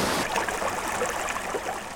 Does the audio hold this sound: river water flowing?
yes